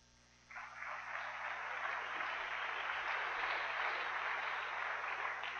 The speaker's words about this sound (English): So, just one more, please, everybody, a round of applause for Penny Legate.